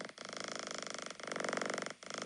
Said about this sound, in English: There's also a cat purring.